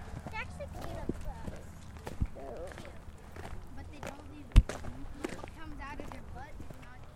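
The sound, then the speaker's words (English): Hooves clop irregularly on hard ground as a calf (baby cow) walks during a hike, with one sharper, louder knock partway through, while people talk over the steps. “See the cow?”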